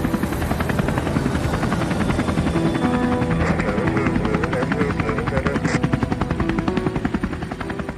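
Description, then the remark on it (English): A helicopter fitted with thermal imaging equipment drones steadily overhead while scanning a property at Jacksmith Lake. Its rotor chops in a fast, regular low-pitched pulse with a whining engine hum, loud and continuous throughout with no talking. “Helicopters, kitted with thermal imaging equipment, buzzed overhead for countless hours scanning this particular property”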